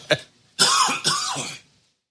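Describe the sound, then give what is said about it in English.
A short throaty catch, then two loud, harsh, raspy coughs in quick succession, with no talking around them. “I got a cough again.”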